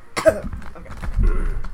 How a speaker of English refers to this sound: Go over there and, like, cough it out. Don't try to hold it back. It's gonna make it worse.